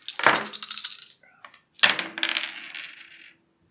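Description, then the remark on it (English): Dice rattle and clatter across a hard tabletop in two separate rolls for a mobility roll in a game, each a quick burst of bright clicks and tumbling knocks that settles, with a short quiet pause between them. “Okay, so that's a mobility roll then.”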